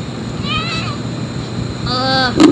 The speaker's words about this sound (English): And that's my cat. He's really old.